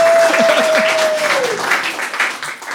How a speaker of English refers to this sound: Yeah, you can clap for her. She's 13.